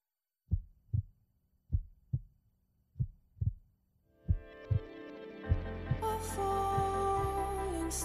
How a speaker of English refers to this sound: I don't think it's a very scary song, but it does have a heartbeat as a rhythm. You can hear it kind of here at the beginning.